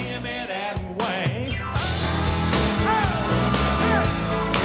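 A live crowd cheers and whoops continuously, with overlapping yells and rising, swooping shouts riding over a dense, loud roar of many voices for the whole stretch.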